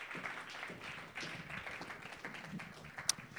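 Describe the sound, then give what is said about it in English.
A crowd applauds steadily, many hands clapping at once in a dense, continuous wash of sound that holds at an even level for several seconds, with one sharper crack standing out near the end. “Give them a round of applause. Keep it going.”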